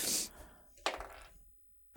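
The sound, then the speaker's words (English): Dice clatter across a hard surface: a brief rattling burst, then a sharper clack that tumbles briefly and fades, ending with a sudden knock. No one speaks. The die is rolled for a constitution save in a tabletop game. “I'm going to use a different dice because the other one was rolling badly.”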